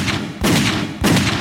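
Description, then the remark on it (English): Three loud gunshots from Luke's gun, fired at a steady pace about half a second apart, each a sharp booming crack followed by a heavy, rumbling tail that carries into the next shot. “Luke's gun roared out three more rounds.”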